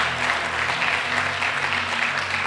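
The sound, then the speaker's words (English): An audience claps for Jesus together in a dense, steady wash of applause, loud and continuous for a couple of seconds, with a low hum underneath and no clear speech. “Anybody changing, clap for Jesus.”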